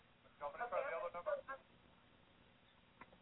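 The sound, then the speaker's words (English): A thin, tinny voice comes through a Skype call line with an echo, lasting about a second before fading into near silence with a faint click near the end. “I'm going to kill the Skype because it's echoing.”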